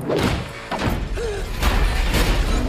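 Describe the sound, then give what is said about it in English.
A heavy door thuds shut, with a couple of dull, solid impacts standing out against a dense, steady rumble of background noise. No one speaks. “Wow, that's an expensive door.”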